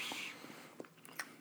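Quiet chewing of a too-big piece of tender beef jerky with a little heat: a handful of soft, moist clicks and smacks spaced irregularly over a second and a half, with no talking.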